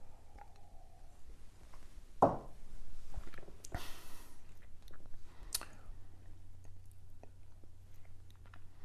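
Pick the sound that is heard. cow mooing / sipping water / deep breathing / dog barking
sipping water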